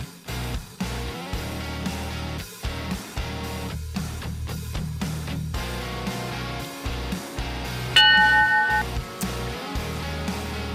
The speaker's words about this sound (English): Well, the bell means it's time to jump back into it. Don't go anywhere.